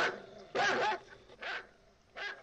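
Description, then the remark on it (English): A dog, Lester, barks three times in quick, uneven succession, the first bark longest and loudest, each one sharp with short pauses between. “Lester's barking again and getting on my nerves again.”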